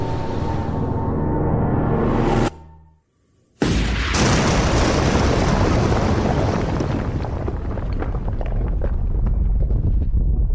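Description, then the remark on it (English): An earthquake on a city street: a deep, loud rumble with a droning tone cuts off abruptly for a second, then a roaring burst of noise follows, crackling and rattling with scattered impacts as dust and bits of rock, paper and metal debris fly down. No voices. “The earth quaked.”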